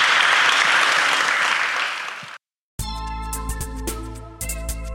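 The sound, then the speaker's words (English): At the close of a media panel debate in Brussels, a crowd applauds the panelists. The clapping is steady, a loud, dense wash for a couple of seconds, and cuts off abruptly. After a brief silence, music with sustained tones begins. “I'd like to ask you to give a big round of applause”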